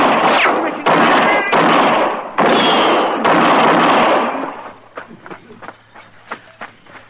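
Gunfire in a radio drama shootout involving Marshal Dillon: five loud, echoing shots ring out about a second apart, then the noise drops to a scatter of quieter sharp clicks and thuds.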